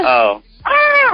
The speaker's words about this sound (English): What was that? Kind of a groan. Yeah, just a groan.